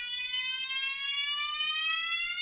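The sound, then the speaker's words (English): A fire alarm blares continuously during a fire drill, a loud, steady high-pitched electronic tone with many bright harmonics that holds without a break and rises very slightly in pitch. “I think when you hold too many drills, like these guys do, we're absolutely...”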